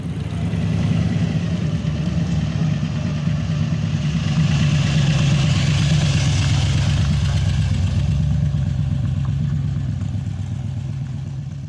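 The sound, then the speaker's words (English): A muscle car engine rumbles steadily, a deep loud throb with a brief rise in revs midway before settling back to a heavy idle, no voices present. “get a bit of rumble happening.”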